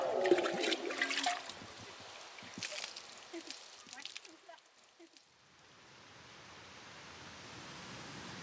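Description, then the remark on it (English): Water splashes and rushes from fountains on the Capitol grounds during an evening stroll, loud and choppy at first, then settling into a steadier, softer spray that continues to the end. “I thought it'd be a fitting way to wrap up this day with a little evening stroll around some of the fountains here on the Capitol grounds.”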